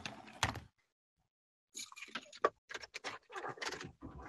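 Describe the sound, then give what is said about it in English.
A burst of sharp knocking on a door, one quick rap, then a pause, then a rapid, irregular cluster of raps that runs on for a couple of seconds. No one speaks. “Hang on, let me see who's knocking.”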